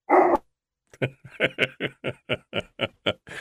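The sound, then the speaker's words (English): A dog lets out one loud bark, pauses, then fires off a fast, steady run of about a dozen short, sharp barks in quick rhythm, with no talking. “Come over here. Quit that. Doggy. No.”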